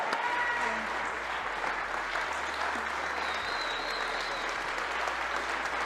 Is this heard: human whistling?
no